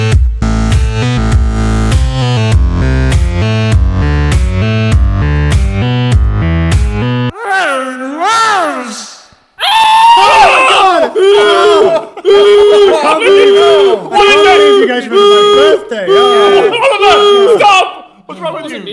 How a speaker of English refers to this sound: That was the surprise party alarm. That alarm sounds exactly like your sex voice.